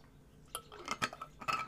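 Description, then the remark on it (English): Someone sips red juice made from carrots, beets, oranges, apple and lemon from a glass: a few light, bright clinks of glass and soft handling noises, with brief quiet sipping sounds and no talking. “Beautifully, beautiful, beautiful red juice, which I am taking a sip of now.”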